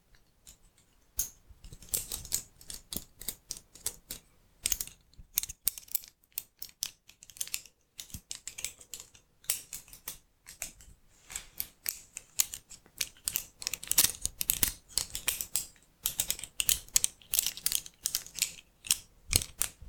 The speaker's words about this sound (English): And these are the scissors.